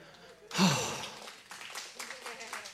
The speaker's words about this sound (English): Why are you applauding the man on Mother's Day?